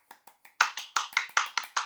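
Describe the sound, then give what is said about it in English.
A short golf clap: three soft claps, then about seven crisper, slightly louder claps in a steady, quick rhythm. No one speaks. “Golf clap to this show.”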